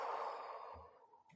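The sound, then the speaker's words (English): A long, deep exhale during an energy-breathing exercise rushes out as a breathy, airy whoosh that fades over about a second, fairly soft, with a faint breath at the very end and no talking. “Breathe in and push it out.”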